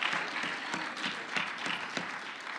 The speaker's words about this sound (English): Oh, if you need the Lord in your life, I wish you'd clap your hands and shout unto God.